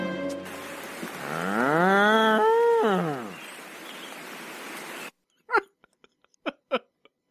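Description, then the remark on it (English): A single long, loud cow moo rising and falling in pitch over a few seconds, followed by a few faint short clicks and knocks in near silence. “What, Robbie? that cow.”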